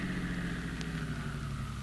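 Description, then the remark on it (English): A car engine idles as the car stops, with a steady, low rumbling hum that holds evenly throughout, moderately loud, with no voices. “Now stop your car.”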